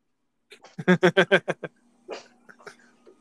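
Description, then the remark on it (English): A dog, Zeke, barks in a quick run of six or seven loud barks, followed by a few fainter, scattered yips and noises. “I don't know what the hell he's barking at.”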